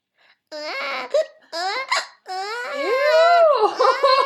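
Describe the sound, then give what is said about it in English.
A woman's voice imitates an infant crying in three wailing bursts, the last long and drawn out, with rising and falling pitch. “When the lechuza finds her target, she will perch in a location where she can't easily be seen, where she will either whistle a strange tune or mock the sound of an infant crying.”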